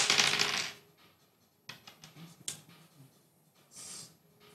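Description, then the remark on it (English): Dice clatter and rattle as someone rummages through a pile, starting with a loud jumbled rush, then scattered sharp clicks, and ending with one more brief rattle. No one speaks. “Just need to find another one of these dice. Here they go. They're all jumbled up.”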